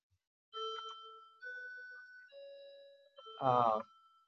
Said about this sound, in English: Just to avoid that annoying chime in the background.